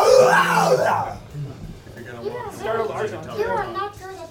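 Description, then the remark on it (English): A person lets out a loud, high, wavering scream at a creature, lasting about a second, followed by rapid, animated vocalizing that sounds like excited talk or chatter. “As it's trying to concentrate, I'll just scream at it.”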